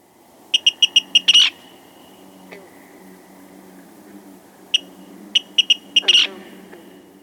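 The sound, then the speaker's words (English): A female Virginia rail gives a stuttering call: bursts of quick, sharp, high-pitched notes that run together into a rough chatter, repeated twice with a pause between, over faint background hiss. “Anyway, back to female Virginia rails. They can answer their male counterparts with their own version of a ticket that has a stuttering quality to it.”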